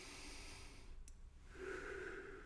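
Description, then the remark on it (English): A slow, deep breath drawn in and let out into the microphone, a soft airy rush that swells and fades, with no talking; a person taking big, deep breaths while praying. “I'm consciously sitting in the presence of our Father, and I'm breathing. I'm taking big, deep breaths.”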